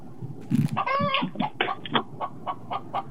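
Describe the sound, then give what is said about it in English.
A chicken clucks repeatedly in short, choppy bursts with a rising squawk near the start, moderately loud over a steady outdoor background. “And there's a chicken. There's a chicken over here.”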